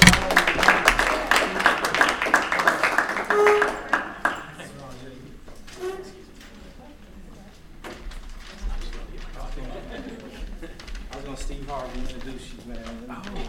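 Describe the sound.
Audience applause: a dense burst of clapping for the first few seconds, then quieter scattered claps continuing under people talking.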